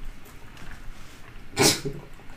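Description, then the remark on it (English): A single sharp sneeze bursts out about two-thirds of the way through, standing alone against quiet background noise. “Sneeze.”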